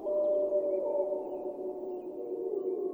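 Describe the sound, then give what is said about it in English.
Several wolves howl together in Yellowstone in long, overlapping tones that hold steady and blend into a continuous chorus, moderately loud, with no talking. “You see, there's a seasonal cycle to wolf howling.”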